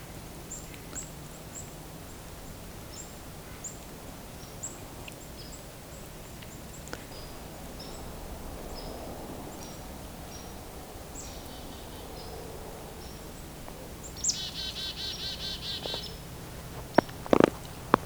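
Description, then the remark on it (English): Faint whistled song of several black-capped chickadees at a roadside alongside a woodlot of cedar, poplar, birch and maple, short clear notes repeated over a quiet outdoor background, with a brief burst of busier chirping toward the end. “We got some black-capped chickadees singing. So that whistle, that is their song.”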